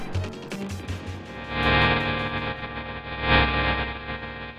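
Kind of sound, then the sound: signal or alarm, morse code beeps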